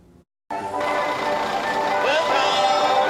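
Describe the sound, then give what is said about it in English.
A lively folk tune bursts in after a brief quiet moment and plays on loud and steady as visitors emerge from a bus at a leisure farm in Taiwan, its bright melody ringing out continuously until the end. “Against the lively melody of folk music, visitors from around the world emerge from a bus.”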